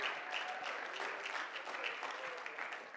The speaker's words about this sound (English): Come on, clap your hands and praise God this morning.